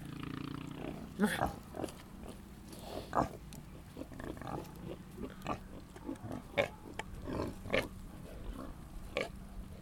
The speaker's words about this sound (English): Pigs make a lot of different sounds. They grunt a lot, they yell at each other, and they're so expressive. What you just heard was a pig rubbing their behind up against the fence right beside me.